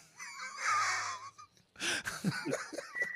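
sound effect, whistle sound effect

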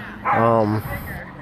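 animal, dogs barking

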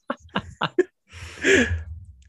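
animal, dog snoring

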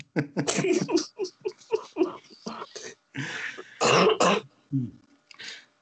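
human body sound, throat clearing and coughing

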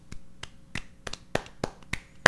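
human body sound, hand clap

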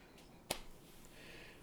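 human body sound, clapping

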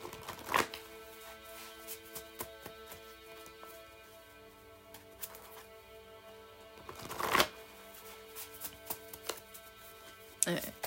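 household object, tarot cards being shuffled

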